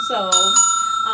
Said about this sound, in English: I thought she'd be more thankful for my bells. I'm thankful for you, not your bells